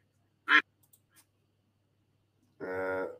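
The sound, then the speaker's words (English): A duck quacks twice, first a short sharp squawk, then after a two-second pause a longer, buzzy, nasal quack, clear with no talking. “Came out of nowhere, blew us out of the water, literally, because he's a duck.”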